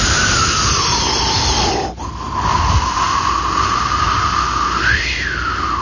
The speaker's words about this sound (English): Looking out, and the wind would be howling past the window.